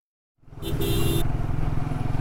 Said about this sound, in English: I put on a helmet, hop onto a friend's motorbike, and go out in the city. Maybe some exhaust will help clear my head.